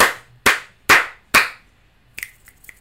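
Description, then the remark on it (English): Four loud, sharp hand claps in a steady, even rhythm, given as a rating, each with a brief ringing tail, followed by a few quieter, crisp finger snaps. “Four claps.”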